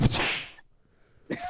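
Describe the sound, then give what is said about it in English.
A sharp, loud smack rings out and fades over about half a second, then after a brief silence another hard hit lands, like a slap to the face being demonstrated. “And he was going from one end of the stage to the other, sliding on his ass. Slapping me in the face. Like he was like this.”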